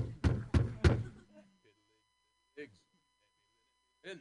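Three heavy, evenly spaced knocks pound loudly on a door, followed by quiet pauses and a couple of brief, faint vocal sounds.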